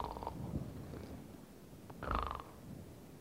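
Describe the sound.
A voice mimics Jesus snoring: two rough, rumbling snore sounds about two seconds apart, the second one louder and longer, with no talking in between.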